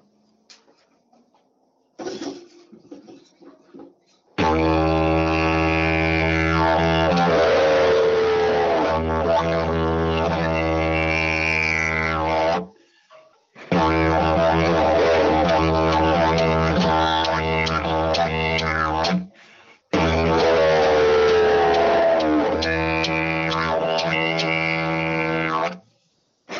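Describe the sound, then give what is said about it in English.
A person imitates a yowie growl in three long, loud, raspy rumbles with a low, buzzing tone and wavering pitch, each separated by a brief pause. “You know, I'll give you an example, look, and I'll do the growl with it, look, hang on.”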